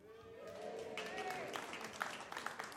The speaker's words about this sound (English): We're hopping back, France. I'm not sure, have we got? Yes, where are they? Somebody. Oh, wonderful. Give us a quick cheer.